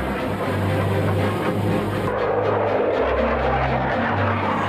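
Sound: fighter jets flying overhead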